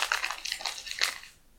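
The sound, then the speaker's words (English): Paper crumpled into a ball, giving a dense run of crisp, crackling rustles with a few sharper crinkles. The crackling fades out over about a second and a half, with no voices. “I really like that you crumple them up now.”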